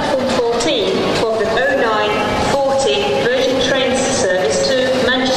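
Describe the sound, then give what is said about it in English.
Euston Station in London, a busy railway station, hums with steady crowd and rail noise, while an indistinct public-address announcement about a Virgin train service carries over it throughout, loud, without pause. “I love the fact there's a little Virgin train service in there.”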